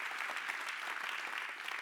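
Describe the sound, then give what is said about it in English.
Steady applause from a large audience at a worship service, applauding the worship team: a dense, even clatter of many hands clapping at once without pause, holding a constant moderate level throughout. “Let's keep our applause going if we can.”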